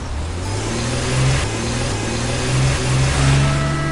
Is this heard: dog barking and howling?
no